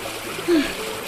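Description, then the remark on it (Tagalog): Steady river water trickles and flows with a continuous rushing hiss as someone washes laundry in the river, broken only by a brief vocal-sounding tone partway through. “Nakakapagod talaga maglaba dito sa ilog na.”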